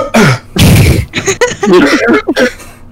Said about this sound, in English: Oh shit. I'm choking.